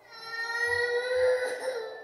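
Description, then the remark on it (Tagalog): A child's high, wavering cry sustained for a couple of seconds, moderately loud, with a strained tonal wail and no talking, heard at night in a bedroom. “Nung biglang may naulinigan akong parang batang umiiyak.”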